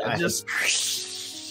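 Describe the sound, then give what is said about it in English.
A person makes a long, breathy hissing sound with their mouth, mimicking an aerosol spray, sustained for over a second after a brief voiced lead-in, fairly loud. “I hate it here, as like we're just getting sprayed.”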